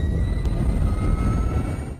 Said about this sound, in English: Here, I'm gonna play this so you guys can hear what the Harley sounds like. This is the new Harley Davidson. It's testing an electric motorcycle. Here it is. Sound of its own once it gets going.